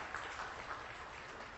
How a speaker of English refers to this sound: Somebody clap. Let's all clap for that because that's a good thing.